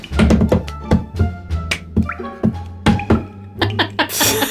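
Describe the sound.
A cup is banged over and over in a prison cell against a hard surface, a string of sharp, ringing knocks at an uneven rhythm, a dozen or so hits with brief pauses between them.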